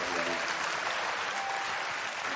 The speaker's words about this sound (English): Amen. Amen. Clap for Jesus. Yes.